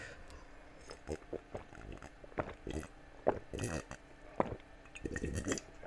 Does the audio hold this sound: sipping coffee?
yes